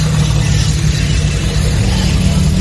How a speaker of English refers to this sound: We've got our sheriff's office truck pulling into the garage here at the Mico Fire Station.